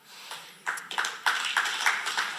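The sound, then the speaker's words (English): An audience clapping in hot weather, a scattered patter of hand claps that swells after a quiet start and keeps up a loose, uneven rhythm, with no voices. “I wasn't sure if in this heat we would be able to secure any clapping at all, but I'm grateful that you did that.”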